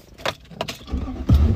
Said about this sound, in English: I'm gonna re-park the car.